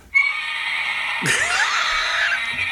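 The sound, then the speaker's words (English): A loud, sustained Godzilla roar with a harsh, shrieking, high-pitched tone. It starts abruptly, rises partway through, and keeps blaring for nearly three seconds without any talking. “Godzilla roars.”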